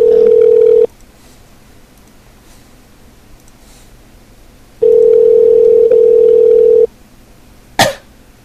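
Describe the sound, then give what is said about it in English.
A loud, steady telephone dial tone hums briefly as someone tries to place a call, cuts out into near silence, then returns for about two seconds before stopping, followed by a short sharp burst of noise. “Why isn't it ringing?”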